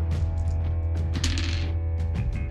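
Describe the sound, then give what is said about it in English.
Dice rattle and clatter in a quick, busy burst of small hard clicks, rolling over a steady low background hum with no voices; the dice are rolled at the end of a player's turn in a tabletop game. “At the end of your turn, yeah, the dice of fate do their jiggly thing.”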